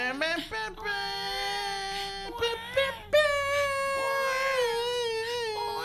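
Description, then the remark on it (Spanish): Babies wail almost without pause in the background, loud, their high, strained cries rising and falling in long drawn-out bursts with brief catches for breath. “Y tú escuches atrás unos bebés llorando que no paran para nada.”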